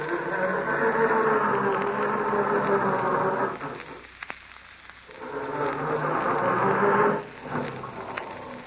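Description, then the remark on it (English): A car engine cranks slowly on a cold start, a heavy, labored grinding that runs for several seconds, stops briefly, then grinds again without catching before dropping away. “For that slow, heavy grinding is possibly caused from oil so stiff and heavy, it acts like glue in your motor.”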